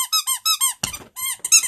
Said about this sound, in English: Stop squeaking the ball!